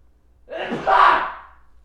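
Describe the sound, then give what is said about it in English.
A single sneeze: a brief sharp intake of breath followed by a loud, breathy, hissing burst that fades out quickly, with no talking around it. “Bless you.”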